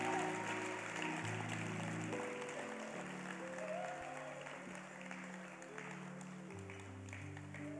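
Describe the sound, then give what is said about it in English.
A church audience claps steadily for the Greater Love Choir, a dense, continuous patter of many hands lasting the whole stretch, with sustained keyboard chords humming beneath it and no talking. “The Greater Love Choir, clap for them.”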